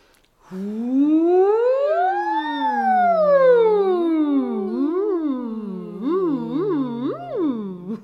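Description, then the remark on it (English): A voice imitates a roller coaster ride on an out-breath during a relaxation exercise, with a long sliding hum that climbs and falls in pitch, then a quick run of looping up-and-down swoops, alone and without words. “Let's try a roller coaster.”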